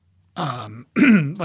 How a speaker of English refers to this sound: Coughed right on the microphone there. How dare you? How dare, I'm sorry. But like, it's like kicking microphones, you're coughing on it.